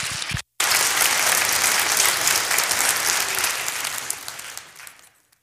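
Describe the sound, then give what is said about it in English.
A crowd breaks into sustained applause, dense clapping that holds steady for several seconds before gradually thinning and fading out, with no one speaking. “A big round of applause for Addison.”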